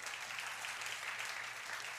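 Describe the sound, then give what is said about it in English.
An audience applauds steadily during a sermon, a dense, even wash of many hands clapping at once, holding a constant level for the full two seconds with no voices standing out. “Yeah, you can clap to that if you believe it.”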